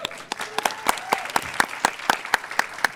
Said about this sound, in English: You should and definitely clap.